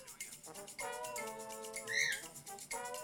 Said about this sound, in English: I don't know if you hear Bert. He just started squawking in the last, like, 1 minute of our conversation. He's like, no more good can come from this conversation. he's done.